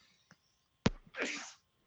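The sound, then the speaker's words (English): A single sneeze: a sharp, explosive burst followed by a breathy, hissing exhale, with no one talking over it. “Bless you.”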